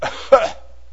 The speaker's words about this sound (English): You don't cough. It's not one long, continuous cough. There's a cough.